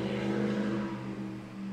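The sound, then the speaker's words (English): A truck's loud, throaty engine rumbles with a strong low drone, its loud exhaust roaring steadily as the truck revs and then eases slightly as it moves past. No voices are heard. “No, I think it was just a truck with a loud exhaust.”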